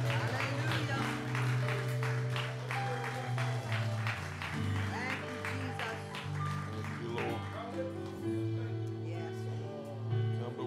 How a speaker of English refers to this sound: you give the Lord a hand clap of praise?